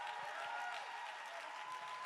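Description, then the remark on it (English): A crowd claps their hands steadily together, a dense, continuous wash of applause with no one speaking, with a faint sustained tone underneath. “Somebody shout. Somebody clap your hands.”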